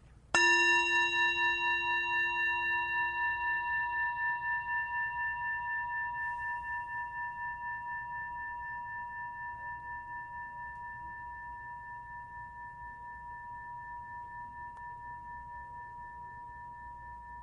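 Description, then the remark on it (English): A single struck gong rings out with a bright metallic attack, then hums and shimmers with a slow wavering pulse as it decays gradually over many seconds, heard alone with no talking. “I've got a gong here. Okay. And I'm going to ring it.”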